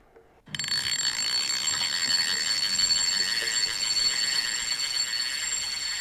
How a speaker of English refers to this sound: What is it? But it's disappointing considering you've gone fishing. It's a fishing reel.